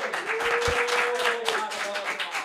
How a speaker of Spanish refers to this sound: puñeta, aplauso.